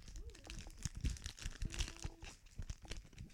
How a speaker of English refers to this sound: Here, let me get some of these started for you. People can listen to the crunch of the wrappers.